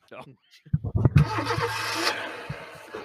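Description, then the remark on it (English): A Ford Mustang engine cranks with a few quick stuttering turns, then catches and bursts into a loud, sustained rev that rumbles on steady until the end. “Do I got to stop playing the Mustang video every time?”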